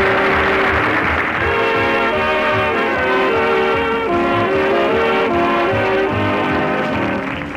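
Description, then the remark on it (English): A loud, sustained train horn blares steadily for several seconds as a train arrives at a depot, its chord-like tone held over a low rumbling beneath, continuous with no talking. “Better hurry up, Scooter. Here comes the train.”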